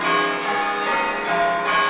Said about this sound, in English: Though I've grown old, the bell still rings for me, as it does for all who truly believe.